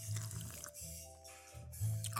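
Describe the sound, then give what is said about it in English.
Faint clinks of ice shifting in a cocktail glass at a tiki bar with a soft, wet sip of the cocktail, a light ringing tone lingering underneath, over a low steady hum with no talking. “I hope you can hear the ice in the glass. Let me have a sip.”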